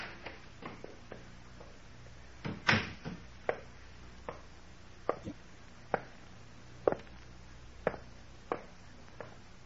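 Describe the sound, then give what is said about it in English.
A front door being opened, heard as a run of sharp, irregular clicks and knocks with one heavier clunk early on, quiet, with no talking. “There's someone at the front door.”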